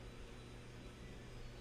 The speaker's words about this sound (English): The dryer.